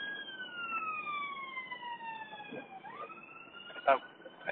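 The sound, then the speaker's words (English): An emergency siren wails outdoors, its sustained tones gliding slowly downward in pitch as it passes, over a bed of street noise with a brief knock near the end. “There's a siren going off.”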